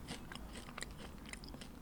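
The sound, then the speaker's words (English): Someone chews a crunchy edible katydid from Uganda, producing a quick series of sharp, crackling crunches in an irregular rhythm over a low steady hum, with no talking. “A katydid from Uganda is coming up next.”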